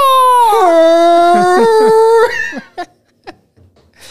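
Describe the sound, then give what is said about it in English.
A person imitates a Bigfoot mating call: a loud, sustained howling cry lasting about two seconds that steps down in pitch, followed by a few short breathy vocal bursts. “You want to do your best Bigfoot mating call?”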